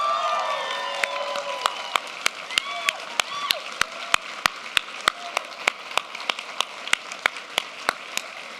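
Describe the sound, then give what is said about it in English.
Applause and cheering from a standing crowd, giving a round of applause for the people baptized that day: a steady, evenly spaced clapping beat rings out over a continuous roar of voices, with high whistles and whoops rising early on. “So right now, we're going to give one more round of applause for all these people who got baptized today.”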